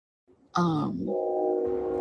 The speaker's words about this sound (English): Oh, there's a train passing by. How rude.